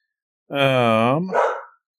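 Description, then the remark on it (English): An excited dog with a blanket, walking by, lets out a single loud, drawn-out bark with a whining, tonal quality, ending in a short rougher huff. No one speaks over it. “Just look behind me, and there's the dog with the blanket just walking by. Apparently, she's excited.”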